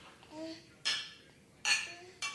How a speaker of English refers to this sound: Do you guys all hear that? Hear the clinking of the glasses? We should have put up a microphone just for the glass click.